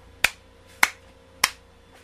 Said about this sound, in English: Oh, you know what? Another slow clap.